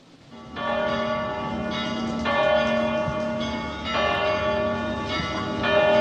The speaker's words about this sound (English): Church bells ring in Bethlehem, where it all started, as dozens of worshippers gather for a scaled-down traditional Christmas Day Mass.